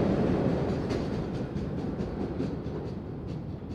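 One of the very last late-night subway trains on Boston's MBTA rumbles out of a station, a heavy low roar with faint rhythmic clicking of wheels on rails, easing slightly as it pulls away. No voices.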